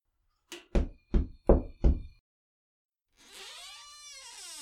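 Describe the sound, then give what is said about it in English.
Five firm, evenly spaced, solid knocks on a door at the end of an alley, then a pause before a long, wavering creak-like tone rises and falls. “Finn knocked.”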